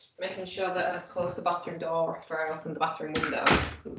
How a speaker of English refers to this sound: Making sure that I close the bathroom door after I open the bathroom window. So my cat hasn't, like, just learning out of the window.